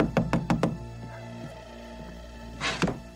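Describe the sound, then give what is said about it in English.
Four quick, firm knocks on a door in a steady rhythm, fairly loud, followed by a low hum and a brief rustling shuffle near the end; in a film scene, a man knocks on the door of Ray Finkel's defaced house. “And he then knocks on the door.”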